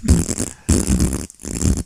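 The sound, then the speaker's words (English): Someone imitates a fart with their mouth: three long, buzzy raspberry blasts in quick succession, separated by brief pauses, loud. “Is it like continuous fart? Yeah, kid, nonstop.”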